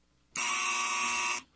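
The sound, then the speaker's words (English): A single loud, harsh electronic quiz buzzer holds steady for about a second, then cuts off abruptly, sounded on a player's guess during a quiz naming cities. “I said Cleveland and you buzzed me.”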